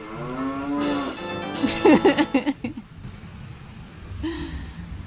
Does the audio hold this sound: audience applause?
no